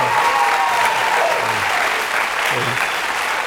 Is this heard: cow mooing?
no